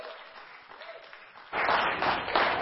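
An audience applauds with a dense, crackling wash of many hands clapping, steady at first and then swelling noticeably louder about halfway through. No one speaks.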